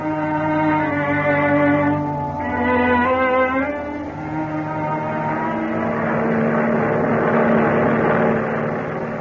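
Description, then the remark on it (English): A steady, loud engine drone with layered harmonic tones from a transport airplane flying at high speed, about 150 miles an hour, holding a continuous roar throughout with a slight surge and shift in pitch partway. “A transport airplane moving through the sky at high speed.”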